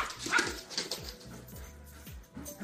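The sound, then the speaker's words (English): Puppies yip and give small, high-pitched barks in a quick, scrappy run while playing, with a few whimpers mixed in, fairly quiet, with no talking. “I could watch puppies play all day.”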